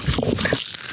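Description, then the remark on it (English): Loud crunching of potato chips being chewed, a quick series of crisp, crackly bites filling the moment with no one talking. “Oh, we still munching.”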